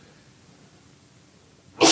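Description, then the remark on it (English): A single loud, sharp sneeze bursts out right at the end, after nearly two seconds of faint background hush. “Bless you.”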